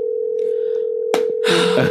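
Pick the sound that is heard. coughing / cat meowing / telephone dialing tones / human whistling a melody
telephone dialing tones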